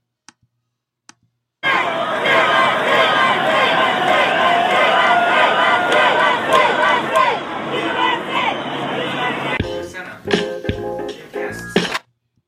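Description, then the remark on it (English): A loud, dense parade crowd roars for about eight seconds, a muffled chant of "USA" buried in the din, followed by scattered clicks and fainter noise before stopping abruptly. “That was a chant of USA.”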